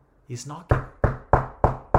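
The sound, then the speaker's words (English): Five firm, evenly spaced knocks on a door, fairly loud, each with a short ringing decay, preceded by a brief vocal sound. “He's knocking.”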